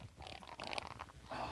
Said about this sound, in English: Quiet. He's going to fart.